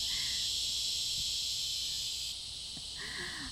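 Cicadas buzz loudly and continuously outdoors in a dense, high-pitched drone that dips slightly partway through, with faint chirps from other insects or birds underneath.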